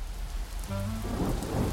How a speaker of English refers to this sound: It was pouring rain. We headed over, umbrellas in hand.